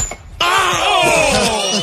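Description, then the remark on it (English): A woman chopping wood strikes it with an axe in one sudden, sharp hit, and the axe rebounds back into her head, followed by a loud, bright tone that rings on steadily for over a second before easing off. “Bounce the axe right back into her head.”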